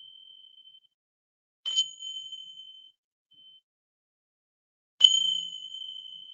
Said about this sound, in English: Oh, and you might not be able to see the bells because I'm holding it down too. I'm used to the laptop being down low. And I also have a bell.